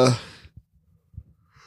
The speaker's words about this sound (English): Heck, I was yawning really hard.